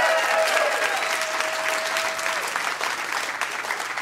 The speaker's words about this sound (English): Well, round of applause for this dude. Round of applause for this dude.